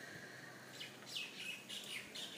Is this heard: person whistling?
no